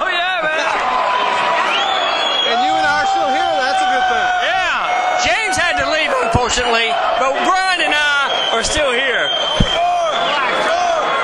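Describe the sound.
A concert crowd cheers wildly as the performer takes a bow and walks off the stage before an encore, a loud unbroken roar of overlapping whoops, shouts and high yells lasting throughout, with a man briefly speaking over the din.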